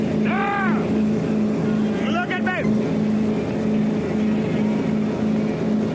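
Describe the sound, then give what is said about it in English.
A motorboat's engine drones loudly and steadily as it speeds across the water, its hum constant throughout, with a couple of brief excited voices calling out over the roar. “Yeah, when I'm on the boat, I like to be like this.”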